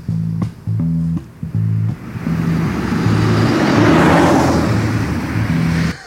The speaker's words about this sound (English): We almost got hit by a car! That was nuts! Do you guys see that?